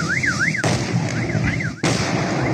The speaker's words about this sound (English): Those are not gunshots. No. Those are the battery cells combusting.